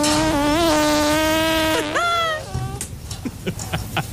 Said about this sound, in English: Do you want to hear an echidna snoring? Yeah. You have not lived till you've heard this. So this is groundbreaking as well. An echidna snoring. Here it is.